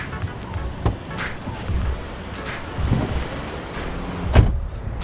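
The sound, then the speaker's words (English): A car drives off, leaving Malibu for the evening, its engine and road noise a steady low rumble at moderate volume, broken by a couple of sharp clunks. No one speaks. “It feels good to leave all of my problems at the Cove and let this car take me away from Malibu for the evening.”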